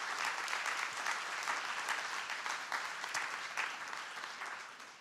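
An audience at a marathon event in Indianapolis applauds steadily, a dense wash of many hands clapping at an even, fairly loud level that tapers slightly toward the end, with no voices heard.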